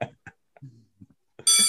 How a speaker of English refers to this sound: All right. And with that, that bell there, it is time for our final class of the day, which is, we'll call it college and career prep.